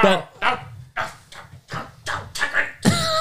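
A beagle barks in a quick, steady run of about seven loud, sharp barks, the last one stretching into a longer baying howl.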